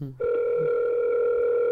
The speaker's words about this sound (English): Oh, that's ominous. It just sounds like a phone ringing.